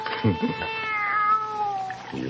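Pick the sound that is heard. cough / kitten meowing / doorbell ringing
kitten meowing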